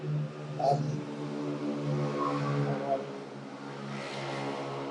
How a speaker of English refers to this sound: It's okay, it's cars going past on the highway. It sounds like airplanes, but it's not.